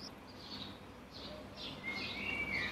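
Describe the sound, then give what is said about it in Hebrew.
Birds chirp faintly in the background in the middle of a city, a series of short high tweets followed by thin whistled notes, set against a low steady ambient hum with no one talking. “אתה שומע ברקע ציפורים?”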